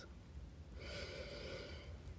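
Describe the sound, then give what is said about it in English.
A single deep breath, soft, with a broad airy hiss that swells and holds for about a second before fading, over a quiet low background rumble. “Breathing in, breathing out, releasing.”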